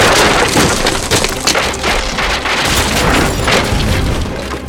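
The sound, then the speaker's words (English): A loud, sustained crashing roar of splintering wood and debris as a car smashes through a front door, with rumbling low booms and crackling fragments throughout. “And then suddenly the front door explodes.”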